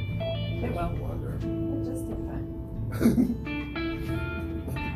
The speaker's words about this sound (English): Well, just in time. Excuse me, as I clear my throat.